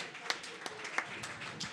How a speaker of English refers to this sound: Team number 13 getting the win with 9 points. Round of applause, team number 13.